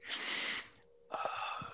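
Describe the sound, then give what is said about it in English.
Two heavy, airy breaths huff straight into the microphone, separated by a short pause. Each is a loud, rushing exhale-like hiss, with no talking. “I'm sorry if you can hear my breathing.”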